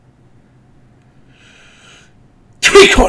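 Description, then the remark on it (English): A single loud, sudden sneeze bursts out near the end, right after a stretch of quiet murmuring and a few faintly spoken words. “Bless you.”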